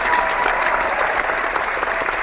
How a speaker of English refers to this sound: So if we had an applause, I would hit an applause. But I don't, so I guess I can clap.